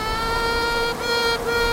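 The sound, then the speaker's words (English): A queen honeybee pipes as the colony grows too big and is about to split, a steady, high, whistling buzz held nearly unbroken with two brief dips, loud over a low hive hum, with no talking. “Queen bees also do something called piping.”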